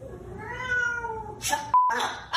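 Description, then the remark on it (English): A cat gives one long, drawn-out meow that slowly falls in pitch, then short harsh scratchy bursts and a brief bright whistle-like tone follow close by. “This is a video of a cat and a parrot, but here's your audio.”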